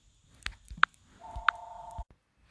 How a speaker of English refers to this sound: Hold up, the phone ringing.